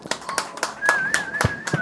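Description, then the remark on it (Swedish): A short round of applause: about eight sharp claps at a quick, fairly even rhythm, moderately loud, with a thin steady whistling tone running underneath. “Det krävs till och med en applåd.”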